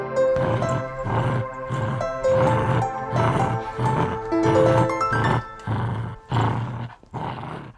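A dog growls and snarls in a rapid series of about ten loud, rough bursts, each separated by brief pauses, sounding aggressive, with no talking.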